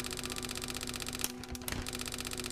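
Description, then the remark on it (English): A teletype printer clatters out a message with a rapid, steady mechanical chatter, briefly pausing before the rhythmic typing resumes, fairly loud with no voices. “Teletypes, also known as teleprinters, were typewriters that they'd used to send out messages over non-switched telephone circuits, the public telephone network, to printers at the receiving agency.”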